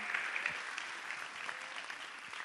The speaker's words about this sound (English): How many have been married over 50 years? Anybody at all? 50. We got some 50s. We got some 50s. Come on, you guys can give a better round of applause than that. That's 50 years. A half a century, baby.